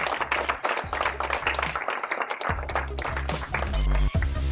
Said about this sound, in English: Let's give a massive round of applause